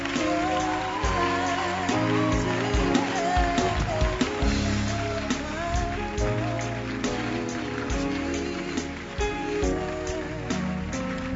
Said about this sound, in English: Don't stop clapping. Unless I've told you, don't stop clapping.